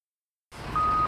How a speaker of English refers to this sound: He's underneath this stoplight on a pretty busy street, and that is why most of the interview features the intrusively loud beeping of a crosswalk signal.